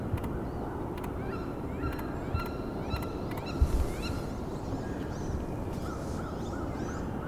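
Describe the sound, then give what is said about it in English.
Seven wood ducks give repeated short, rising squeals and calls over a steady low rumble of wind or water, the calls fairly faint and scattered through the scene, with no talking. “So this is seven wood ducks here.”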